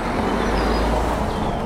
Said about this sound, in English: Car driving past.